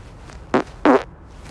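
Two short, loud farts close to the microphone, a brief burst and then a longer, buzzier one, with quiet background between them and no talking.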